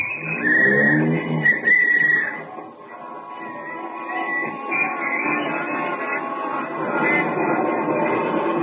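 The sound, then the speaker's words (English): A taxi cab drives up Broadway through evening city traffic on the way to a theater, its engine rumbling steadily for several seconds, with a brief tonal, horn-like sound early on and a busy street wash underneath. “Here's my cab, won't you step in? All right, driver, up Broadway.”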